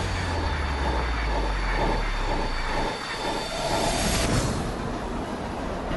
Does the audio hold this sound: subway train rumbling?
yes